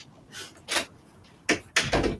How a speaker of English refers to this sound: So I'm just going to close the door on her, as a very bad puppy parent does. One moment.